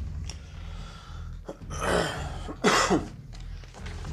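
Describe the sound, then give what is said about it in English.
A few harsh, throaty coughs and a rasping throat-clearing burst out in close succession over a low steady hum, loud, with no talking. “He's still alive, but now he's coughing up a storm”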